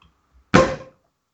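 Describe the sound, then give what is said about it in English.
A single sharp cork pop from a champagne bottle bursts out of near silence, followed by a brief airy hiss that fades within half a second. “Let's hear that pop”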